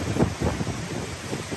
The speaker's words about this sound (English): Incredible storm surge here this morning at about 7 o'clock. Sitting there, look at one of the marine markers coming through. That's a marine marker right there. So that's big water, big wave action. It's approaching the houses here on First Street.